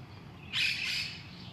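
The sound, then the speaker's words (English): A brief burst of high, bright bird chirping rises suddenly and lingers for about a second over low outdoor rumble, fairly quiet. “Just like these birds that are chirping around me right now.”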